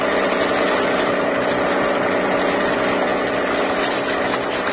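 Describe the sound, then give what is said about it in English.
A police launch's motor drones steadily and loudly throughout as it searches San Francisco Bay, a constant, unbroken engine rumble with no voices or other sounds over it. “Oh, please, could you not make this boat go faster?”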